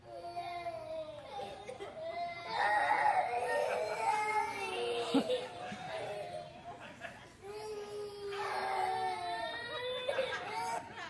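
Young children crying and wailing as they are made to eat vegetables, with rising and falling sobbing cries in two long bursts, mixed with whimpering and some child chatter.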